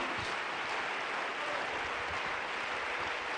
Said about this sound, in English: One more time, clap your hands unto the Lord. Let's worship him. Hallelujah.